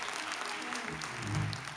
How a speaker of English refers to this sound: Oh, if you're blessed to be alive, you ought to give God a hand clap of praise.